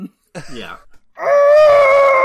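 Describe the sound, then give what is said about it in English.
A person imitates the fictional character Rincewind screaming through gritted teeth: a brief throaty, strained sound, then a loud, sustained, tense high-pitched wail lasting about a second. “Rincewind tried to scream through gritted teeth.”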